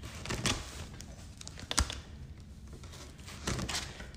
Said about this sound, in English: I just got a pair of scissors I'm going to open it with. I don't have a fancy dedicated unboxing knife or anything like that. But I'm pretty adept at opening these kind of packages with a pair of scissors without damaging anything inside.